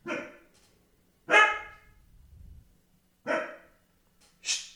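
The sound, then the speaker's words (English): A stray dog in a bustling town barks loudly four times at uneven intervals, with a brief low rumble of traffic between the barks and no voices. “It's a bustling town.”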